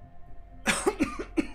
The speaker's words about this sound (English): you do see Uthiel just sort of coughs up a bit of blood.